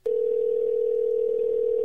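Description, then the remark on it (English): A telephone dial tone of an outgoing call, one steady, unbroken mid-pitched hum that starts abruptly and holds at constant loudness for about two seconds, with no voices. “Let's give him a buzz.”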